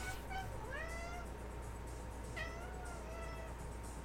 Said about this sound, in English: I hope you guys could hear that. Just sitting here, and all of a sudden I just hear this meow, and I was just like, what the?